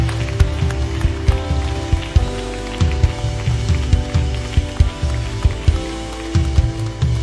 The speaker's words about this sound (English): Come on, let's just clap our hands and thank him for who he is, for what he's done. Amen.